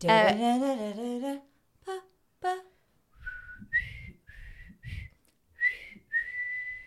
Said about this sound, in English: It's brilliant because you're moving your head thinking the head movement will bring the whistle tone up and down.